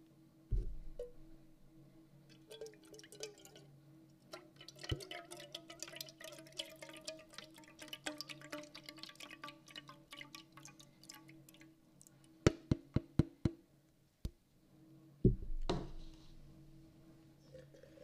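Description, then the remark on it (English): Coffee pours into a silver 1977 Queen's Silver Jubilee mug in a steady, splashy trickle for several seconds, followed by a handful of sharp clinks and taps as the mug is handled. “Silver mug. And I'm going to pour my coffee in there because I need my caffeine, and I'm all out of mead.”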